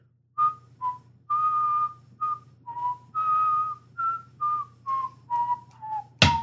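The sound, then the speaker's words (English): Someone whistles the nursery tune This Old Man, about a dozen clear notes in a bouncy, steady rhythm over a low hum, ending with a brief sharp burst of noise; in a horror film, the character Bill whistles it while Janet is on the ceiling. “Whenever Janet was on the ceiling, and he's whistling This Old Man.”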